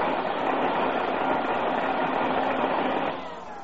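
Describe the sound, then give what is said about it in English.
A noisy, just-repaired vacuum cleaner with noisy gears runs loudly and steadily, its broad rushing roar carrying a rough, chugging texture, then easing slightly in level near the end. No one speaks. “I got that chug, chug, chug out of it, didn't I?”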